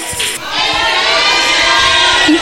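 An audience claps for the Lamb of God and gives the Lord a powerful shout, a loud, sustained roar of many raised voices over a dense patter of hand claps that holds steady throughout.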